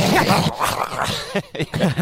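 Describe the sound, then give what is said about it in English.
A person imitates a feisty dog, making rough growling and snarling noises in a few loud bursts over about two seconds. “I don't know if you heard it, but I'll quote that dog.”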